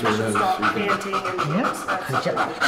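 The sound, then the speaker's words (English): A female detection dog pants in quick, steady breaths during a graded training exercise, while people talk over it throughout; her breathing pattern changes when she gets in odor and stops mouth breathing. “Oh, you can hear the difference in her breathing pattern. Yes. When she got in odor, she stopped mouth breathing.”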